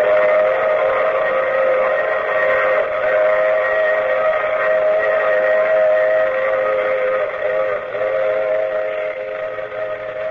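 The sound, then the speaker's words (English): A loud, sustained steam train whistle blows continuously for about ten seconds, its chord of tones holding steady before easing slightly at the end, with no voices present. “I take this same train every week.”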